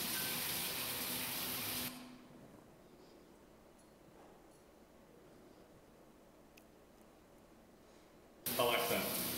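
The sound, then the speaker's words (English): A loud, steady hiss of water spraying from a lab bathroom shower, started by voice command to an Alexa device, fills the first two seconds, drops away to near quiet, then surges back in strongly at the very end. “Alexa, start the shower.”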